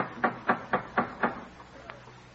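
Five firm, evenly spaced knocks on a door in quick succession, followed after a pause by one faint tap, with no voices. Parishioners knocking loudly at the study of the preacher Cotton Mather in Boston on December 13th, 1707.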